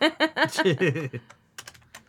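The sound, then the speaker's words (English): A voice-like sound comes first, then a short burst of keys being tapped on a computer keyboard: several quick, crisp clicks, fairly loud, with brief pauses between them. “There's a keyboard in the closet you could grab and use.”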